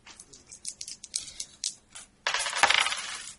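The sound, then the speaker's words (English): Dice being rolled for riding rolls to control horses: a scatter of light, sharp clicks gives way to a louder, dense clattering rattle that tumbles on for about a second before stopping. No one speaks. “Why don't you all make riding rolls to control the animal sufficiently?”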